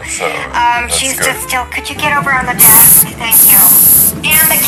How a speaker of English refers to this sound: What's that sound? God. I'm just getting into my jacuzzi now. I think the water will soothe my nerves.